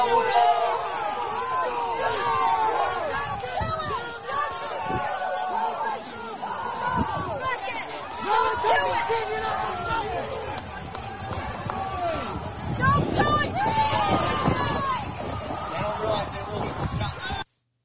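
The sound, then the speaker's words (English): A dense crowd hubbub at a protest, many overlapping voices shouting and talking at once as the crowd begs a man in a black ski mask to stop breaking the law, with occasional dull thumps and a louder surge of voices toward the end. “The crowd is begging Black Ski Mask to stop breaking the law, just like they rejected Ray Epps the night before.”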